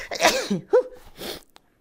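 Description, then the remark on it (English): A sharp sneeze with a sudden explosive burst, followed by a brief wheezy breath and a soft sniff as it trails off. “Bless you.”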